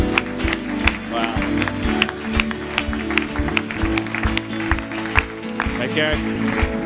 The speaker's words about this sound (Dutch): Kom, laten God een groot applaus geven hier vandaag.